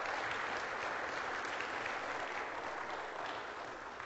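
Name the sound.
audience applause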